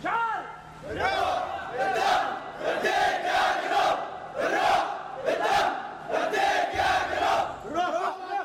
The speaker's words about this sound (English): This is what it sounds like in the Yemeni city of Aden on a picturesque peninsula overlooking the Red Sea, an ancient seaport, a place where traders from Europe and Asia prospered centuries ago.